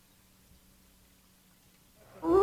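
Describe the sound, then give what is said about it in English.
Near silence gives way abruptly to a loud, rising wolf howl sound effect that begins only at the very end and is cut off almost immediately. “It got cut off. The wolf got involved is what happened.”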